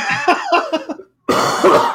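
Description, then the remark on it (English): A quick run of short, hacking coughs, a brief silence, then a longer, harsh cough burst, slightly muffled and off-mic, with no talking. “thank you for coughing away from your mic.”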